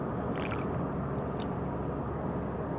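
A canned drink cracks open with a short fizzing burst, then a brief sip or gurgle follows, all faint beneath a loud, steady rumble of a car being driven.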